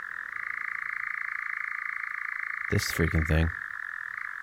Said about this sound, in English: It's a European nightjar. This thing looks like a piece of wood. You would never see this on a branch.